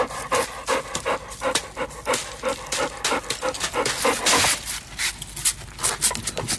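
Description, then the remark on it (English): A dog pants rapidly and steadily in a recorded video being played, a quick rhythmic string of breathy huffs, with no talking over it. “That dog's teeth. I got the video right here.”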